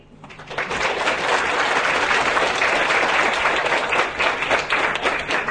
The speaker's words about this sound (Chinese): 让我们再次以热烈的掌声感谢